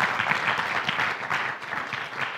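An audience applauds at the end of a talk, a dense, steady patter of many hands clapping at once that holds a fairly even level throughout, with no voices rising above it.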